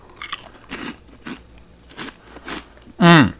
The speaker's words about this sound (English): For example, if you guys know about the Pop-Tart bites, like the mini Pop-Tarts, it's about the size of one of those. Anyway, it's just a churro, right? It's a cinnamon churro little snack. Crunchy bite. I'm going to try it.